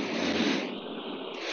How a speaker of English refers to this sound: Can you hear that? Some fake crowd noise. Oh, jeez. It's my baby's white noise machine. It sounded like you were just blowing into a microphone.